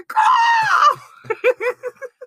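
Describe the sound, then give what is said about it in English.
A person lets out a loud, high, wavering screech of nearly a second, imitating an eagle's cry, followed by a few short bursts of breathy laughter. “Wave them flags. Eagle noise.”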